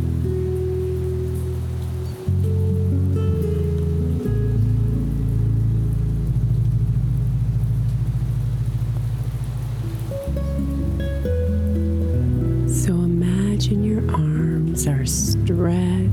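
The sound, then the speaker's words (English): Steady rain patters on a surface throughout, a dense continuous hiss blended with a soft, sustained musical drone whose low chords shift slowly. No one speaks. “Up above you, reaching to meet the falling raindrops, eager to pay homage to all the good.”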